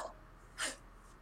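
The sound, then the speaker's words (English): One quick, soft sneeze bursts out in a short hissy puff, isolated in an otherwise quiet moment with no talking. “Bless you.”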